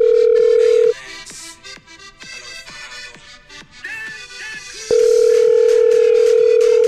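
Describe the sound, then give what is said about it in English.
A steady, buzzing phone-line ringing tone plays loud in two long bursts, separated by a pause of several seconds filled with faint line noise and soft clicks. “Yeah, we're ringing.”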